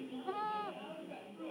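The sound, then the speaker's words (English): A single short, quavering baby goat bleat rises and wavers for about half a second, fairly clear, then fades into a quieter, murmuring background. A young woman in Geneva, Switzerland, buys the baby goat for 2 Swiss francs. “Here's a young woman slotting in her 2 Swiss francs to buy a baby goat.”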